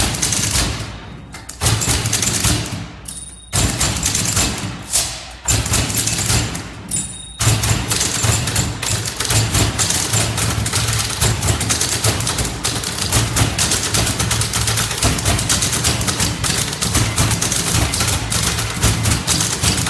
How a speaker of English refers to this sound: who play only typewriters and prepared typewriters, amplified but not processed, to impressive effect. There are six typists on this live recording